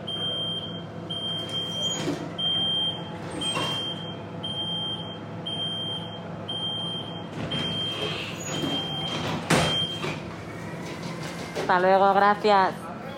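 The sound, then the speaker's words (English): A bus's accessible wheelchair ramp deploys as passengers get off a bus from the airport, amid a steady, high-pitched warning beep that repeats in short pulses, over a rumbling idling engine, with a mechanical clunk and whirring near the end. “By the way, that was the accessible ramp, and our score is 4 out of 5 stars.”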